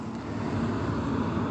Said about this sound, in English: But I'm downtown and there's buildings in the way and lots of traffic, as you've heard.